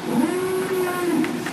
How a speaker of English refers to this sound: That's their alarm noise, yeah.